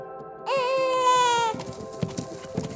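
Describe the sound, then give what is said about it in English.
A recorded human baby's cry played from a speaker rings out once, a loud, wavering wail lasting about a second, followed by soft rustling and hoof-like steps as a mother deer approaches the speaker. “And there she goes again, this time for a human baby.”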